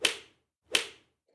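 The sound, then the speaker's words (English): Two crisp flip-flop slaps about a second apart, each a sharp smack with a brief fading tail, heard on their own with no talking. “Pharynx could hear the slap of her ever-present flip-flops, the sound like suction cups on a shower door.”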